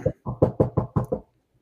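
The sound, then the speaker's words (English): A voice imitates knocking with six quick, evenly spaced thumping beats in a steady rhythm, moderately loud, then silence. “You hear a knock.”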